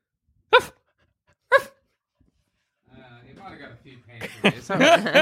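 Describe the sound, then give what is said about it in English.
A dog named Whiskey, with the microphone near it, gives two sharp, loud barks about a second apart, followed by a pause and then people talking with some background commotion. “You have to bark and Dad's then he'll putting bark. The microphone near Whiskey.”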